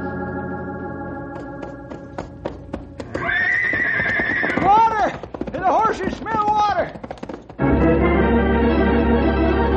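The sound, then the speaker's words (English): Sharp, irregular hoof clip-clops give way to several loud horse whinnies with rising and falling neighs, all over a steady droning tone that swells at the end. “Just ride until the horses drop and then walk and then crawl.”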